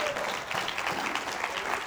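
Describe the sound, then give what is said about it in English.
A crowd gives God a hand clap in a dense, steady burst of applause, many hands striking at once with a bright, crackling texture that holds at an even level throughout. “Give God a hand clap.”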